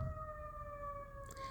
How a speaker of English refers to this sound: So, listen to the siren. The ambulance outside with somebody.